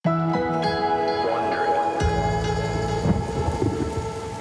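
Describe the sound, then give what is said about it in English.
Steady rain pours throughout on a rainy day in Orangeburg, New York, in 2018, while low thunder rumbles and rolls beneath it, the storm continuous for the full few seconds, with no voices. “It was a rainy day in Orangeburg, New York in 2018.”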